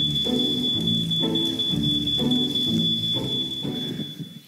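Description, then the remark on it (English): A fire alarm sound effect: a steady, piercing high-pitched tone runs unbroken through the whole clip over a loud, low droning layer that pulses roughly once a second, with no talking. “The sound of that's so realistic.”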